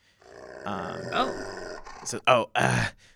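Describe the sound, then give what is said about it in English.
A person imitates a growling dog: a low, rough, drawn-out growl that swells for about two seconds, then breaks into two short, loud snarling bursts. “And as that happens, the Samjoku kind of starts growling.”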